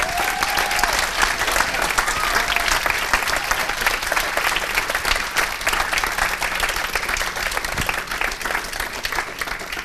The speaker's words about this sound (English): So, hey, I want us right now to give a huge applause to all the pops in the house today.